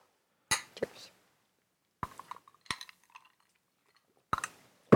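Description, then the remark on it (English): Glasses of non-alcoholic ginger beer clink together a few times in a toast, sharp bright chimes spread across a few seconds, with a little handling noise between the hits and no one talking. “So why don't we try the non-alcoholic, just special ginger beer you brought? Yeah, sounds like a good plan. Give that a try. Cheers.”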